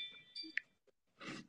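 A Ring video doorbell's motion alert chime: bright, sustained electronic tones with a sharp ping, moderately loud, followed by a short breathy rush of noise.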